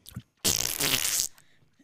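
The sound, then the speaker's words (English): A voice imitates a fart with the mouth: a loud, buzzy, sputtering raspberry lasting nearly a second, preceded by a brief breathy sound, then quiet. “I think I make good fart noises, don't I?”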